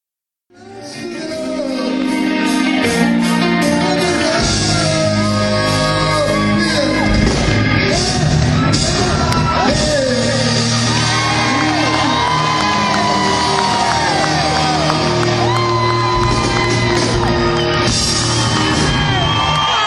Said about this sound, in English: Everybody was screaming, Eddie, Eddie.